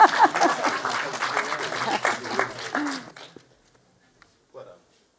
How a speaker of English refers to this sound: I finished a bit early. It's good. Early's good. Everyone's cheering that.